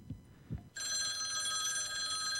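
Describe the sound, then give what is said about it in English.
A telephone rings for a random prize quiz call, a loud, continuous electronic trill starting abruptly after two brief low thumps and holding steady to the end. “All right, let's go to the phones and the see bullet. Who's out there.”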